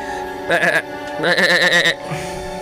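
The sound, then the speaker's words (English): A goat bleats twice in quick succession, a short wavering cry followed by a longer quavering one, loud over a steady low background hum. “That's a goat, Gertrude.”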